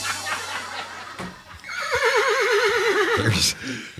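A horse gives a loud whinny, its wavering high neigh rippling for about two seconds before trailing off into a snort, with a low hum and faint rustling beforehand.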